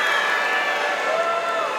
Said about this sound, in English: Oh, okay, that was a mixed bag, but my wife and daughter were cheering, so that's all that matters, go Bengals.